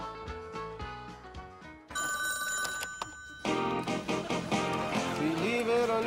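A telephone bell rings loudly for a moment, its bright metallic trill standing out between stretches of melodic music with no one speaking.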